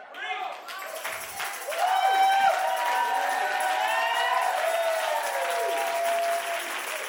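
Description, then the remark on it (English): An audience stands and claps steadily during a sermon while voices shout and cheer over it, the noise swelling after a couple of seconds and staying loud to the end, with raised voices rising and falling through the applause. “I'm going to tell y'all, every time you stand and clap your hands and shout, it's going to make the sermon longer.”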